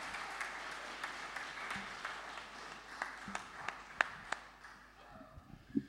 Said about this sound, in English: Can we have a round of applause for my little helpers here, with my fishermen? Thank you.